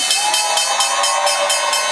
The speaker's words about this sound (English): There it is. Opening bell.